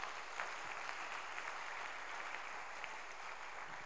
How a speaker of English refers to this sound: You're clapping and singing in the house right now. Is someone clapping their hands right now?